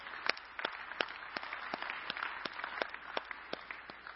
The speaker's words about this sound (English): Somebody better give the Lord a hand clap of praise this morning.